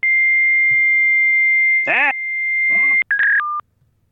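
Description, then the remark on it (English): Modem data tones: a long, steady high-pitched beep, then bursts of warbling, chirping noise, ending with a couple of short stepped tones before the sound cuts off abruptly. “I wonder what that means in modem.”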